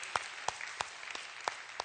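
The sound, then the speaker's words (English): A church audience claps together, giving the Lord and themselves a hand clap. A broad wash of applause, with several sharp, louder claps standing out at irregular moments over a steady crackling bed of hands. “Can you just give the Lord a hand clap and yourselves a hand clap right there?”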